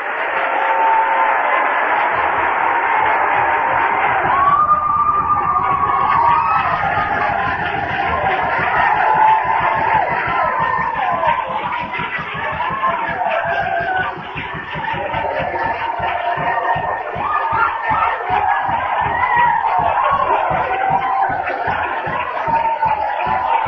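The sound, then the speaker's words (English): A large crowd fills the space with loud, continuous shouting and cheering, with dense rhythmic clapping pulsing underneath throughout, sustained for the whole stretch. “Say shouting. Clapping your hands.”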